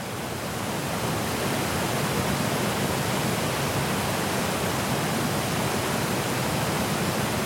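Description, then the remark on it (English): Clearwater Falls on the Clearwater River, lined with fir trees, cascades down rocks in a steady, full-bodied roar of rushing water, loud, holding constant without pauses and with no voices present. “fir trees line the Clearwater River, and the water topples down the rocks of Clearwater Falls.”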